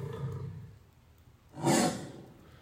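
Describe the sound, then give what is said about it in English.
A lion gives one short, loud roar that bursts out and fades within half a second, preceded by a low, rumbling growl and a quiet pause. “Aslan is a lion, the great lion.”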